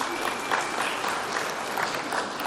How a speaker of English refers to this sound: They're clapping for me. They're proud of me. They're like, yeah, you did it, 20 years.